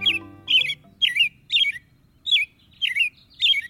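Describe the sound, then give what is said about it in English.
An American robin sings a clear, caroling series of short warbled phrases, about seven in a steady rhythm, distinct, with a faint low hum beneath at the start. “American robins have about a 50-50 chance of living through the year.”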